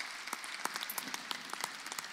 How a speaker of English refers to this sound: And so I just want to give a shout-out to the whole team. We love you guys so much. And, yeah, go ahead and give them a clap.